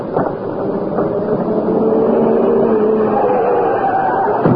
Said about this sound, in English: What's that? It's a car. In this way, but fast.